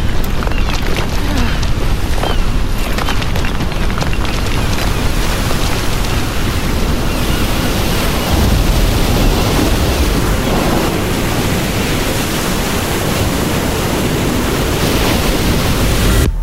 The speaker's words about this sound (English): Holy shit. Rogue wave.